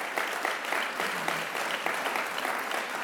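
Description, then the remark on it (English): An audience claps quickly and steadily, a dense wash of many hands at a fairly loud, even level with no voices breaking through. “Quick clapping.”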